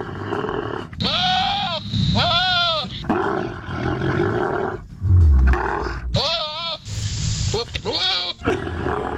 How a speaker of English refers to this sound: Dude, those camels are nightmares. Again, what you were just hearing is the sound of what a camel mating with a goat would sound like.